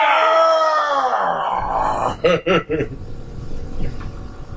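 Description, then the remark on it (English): A voice imitates a growl: a loud, drawn-out, falling vocal groan followed by a few short, rough guttural bursts, with no other talking. “With the growl at the end of it.”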